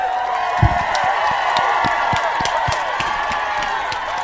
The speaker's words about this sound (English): I'm applauding myself. Just going for it. Brother, we're high energy. We are high. There's nothing wrong with clapping for yourself.